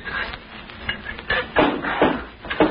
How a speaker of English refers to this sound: Shall I close the trap door again? Yeah, might as well.